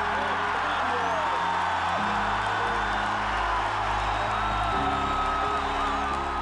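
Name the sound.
stadium crowd cheering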